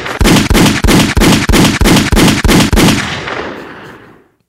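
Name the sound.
gunshot sound effect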